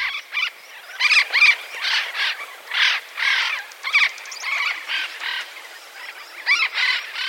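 Harsh, raspy calls of an Andean parrot from high in the Andes Mountains repeat in quick bursts for several seconds, fairly loud, with short gaps between squawks and no voices.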